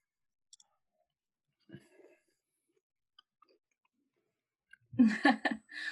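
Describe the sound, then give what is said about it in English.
Faint, sporadic wet clicks and smacks of people chewing food, spaced out over a few quiet seconds, before a burst of voice breaks in at the end. “I should let you guys like chew or something first before I ask these.”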